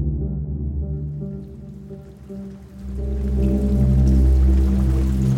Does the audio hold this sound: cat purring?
no